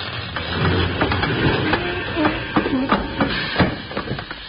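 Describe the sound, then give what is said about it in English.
A train brakes to a stop, its steady rumble broken by a run of sharp metallic clanks and clatters that come close together, loud. “Those brakes sure work since we got them fixed.”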